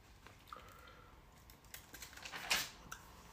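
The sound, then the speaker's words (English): A quiet paper rustle as a book page is turned, with a few soft crinkles building to a brief brighter swish near the end, and no voices. “Give me a second here. I'm turning the page.”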